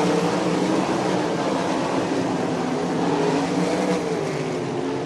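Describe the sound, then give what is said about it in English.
Continuous loud engine roar with wavering pitch as race cars run laps around an oval track, AJ Flick leading the field down the back stretch, steady and dense throughout with no voices. “Flick leads the field down the back stretch. Jones up over the top of one and two.”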